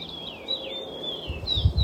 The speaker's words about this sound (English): Greetings to you, coming to you from the North Shore, Gitche'gami, the big lake, just taking in the joyful sounds of the birds. So wonderful to hear their songs again.